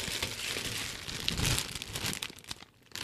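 Paper packaging crinkles and rustles continuously as a box parcel is cut open, fairly loud, with irregular crackling bursts and a brief lull near the end.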